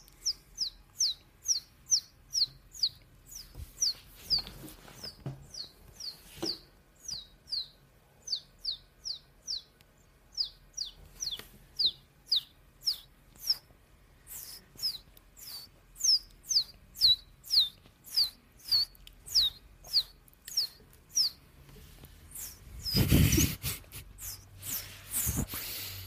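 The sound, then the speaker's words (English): A voice imitates a baby bird with dozens of short, high, squeaky chirps in a quick steady rhythm, fairly clear. A brief rumbling thump breaks in near the end. “Is that a little baby bird?”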